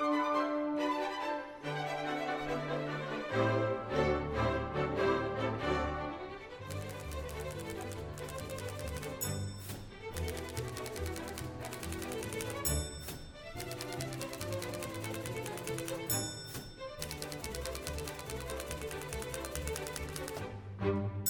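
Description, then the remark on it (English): An upbeat instrumental intro song plays loud and up front for about twenty seconds, with a steady driving beat, sharp percussive hits and dense layered melody, and no voices. “Cue that intro song.”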